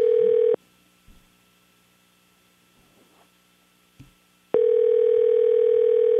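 A loud, steady phone ringing tone cuts off, leaves about four seconds of near silence with faint background rustles, then rings again. It's the repeating ringback of a call to a cell phone that nobody answers.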